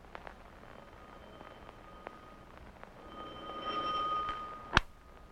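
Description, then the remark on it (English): A doorbell rings with a steady, high electronic tone lasting about a second over faint background hiss, then a single sharp click cuts in just after it stops. “Listen, there's the doorbell.”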